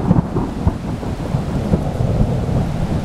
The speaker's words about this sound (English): That is, until the day of the big thunder and lightning storm.